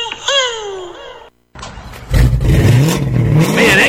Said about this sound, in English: car sounds good. Oh, you know, it's just that Carnage exhaust I got at Troy's Muffler